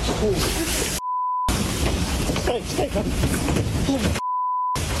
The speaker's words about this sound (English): Also in New Jersey, a homeowner grimly surveys an approaching tornado spawned by Ida. Basement, let's go. Come on. He and his dog take shelter in the basement. Pretty soon, he hears the tornado roaring above them.